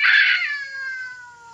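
A cat lets out a loud, drawn-out yowl, starting harsh and strained before settling into a long, wavering wail that slowly fades. No voices accompany it.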